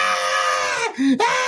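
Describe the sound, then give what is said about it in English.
A person imitates a toy doll's shrill, piercing scream, loud, with one brief dip into a lower wail before the high shriek resumes, and no other talking. “And he freaking starts screaming left and right.”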